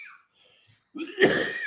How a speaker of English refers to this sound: And don't worry, we'll edit out any coughing or anything. So you can take a minute. Okay, good. We'll make that the trailer for the episode. It's just a cough reel.